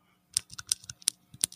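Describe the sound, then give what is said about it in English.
A rapid series of sharp, crisp clicks from a Cherry Blue mechanical keyboard switch, about seven or eight keystrokes in an uneven typing rhythm, with no voices. “This is the cherry blue.”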